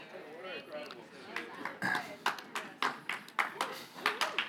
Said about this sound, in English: Love the golf clap, thank you.